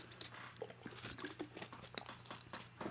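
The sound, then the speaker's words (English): Someone takes sips of water, with soft wet gulps, small mouth clicks and faint liquid sounds coming in an irregular rhythm. The sounds are quiet, and nobody speaks. “But yeah, excuse me, it's more water.”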